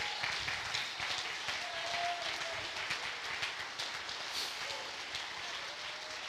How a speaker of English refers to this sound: Woo, I think somebody ought to jump to your feet, clap your hands, get happy about the word.